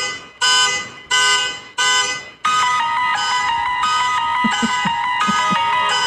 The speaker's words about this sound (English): Here is a keyboard player who hears this going on outside. He's now created a song that you can play over the honking noise from outside. Actually turns it into a kind of a pleasant sound. He found a way to make a mesh.